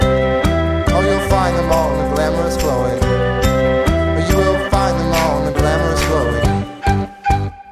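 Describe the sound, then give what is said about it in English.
A band's song plays loudly on its own, with full sustained chords over a steady, driving beat. It carries on without any talking and thins out briefly near the end. “I'd like to thank Kathy from Sergeant House for letting us use that song for the podcast.”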